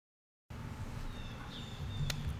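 Thin, high bird chirps and a drawn-out whistle sound over a steady low outdoor rumble, with a brief sharp click near the end.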